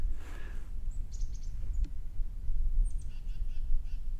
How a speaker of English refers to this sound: There's a titmouse chirping. Not sure if he's angry at me or not, but... there's a lot of them.